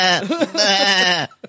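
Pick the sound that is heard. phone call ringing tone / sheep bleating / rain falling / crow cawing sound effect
sheep bleating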